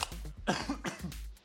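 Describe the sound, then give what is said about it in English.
A short burst of several harsh coughs in quick succession from a person coughing into a microphone while turning their head away, with no talking around them. “I just coughed into the mic, but I tried to turn my head.”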